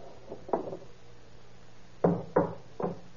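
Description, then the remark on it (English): A hammer strikes a door to knock it off its hinges, with several sharp, solid knocks: two quick blows, a pause, then three more in an irregular rhythm, fairly loud with no one talking. “Hey, what are you trying to do to that door? Take it off the hinges.”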